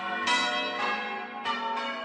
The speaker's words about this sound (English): The word of the day is campanologist. And here is the definition. A person who rings church bells as a job or hobby.